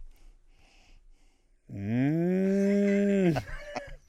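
A single long, loud moo from a cow close by, rising out of a quiet background and holding steady for over a second before cutting off, followed by a few faint knocks.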